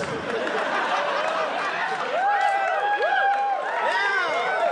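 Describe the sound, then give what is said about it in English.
A large live audience cheers and whoops loudly, many voices overlapping in rising and falling yells that build and stay dense throughout, continuous with no pauses. “See, the crowd has gone wild.”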